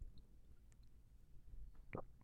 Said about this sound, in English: I'm taking a sip of tea.